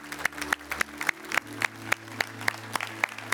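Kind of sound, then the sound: crowd, audience clapping and applauding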